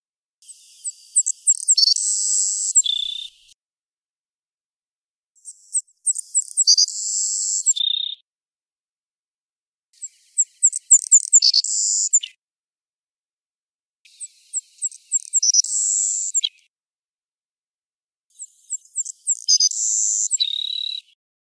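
A single bird sings the same high, sweet phrase five times, each about two to three seconds long and separated by short pauses, clear with no other sounds; this is the bird's song as of 2011.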